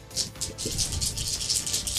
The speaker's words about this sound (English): Out of 12 dice, Tiger only rolled 4 hits